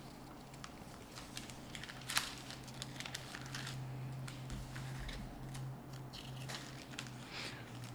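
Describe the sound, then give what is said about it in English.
Scattered crisp rustling of paper Bible pages, many small flicks and crinkles overlapping as several people turn pages at once to look up John 9:34, fairly quiet over a steady low hum, with no talking. “And for those of you who are listening online, you possibly can hear all the rustling of papers, because everybody's rushing now to look to see.”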